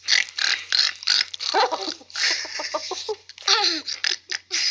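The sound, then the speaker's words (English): A boy's voice imitates a pig eating, making a rapid run of breathy snorts and grunting oinks in quick bursts, with brief pauses between them. “She like makes him imitate a pig.”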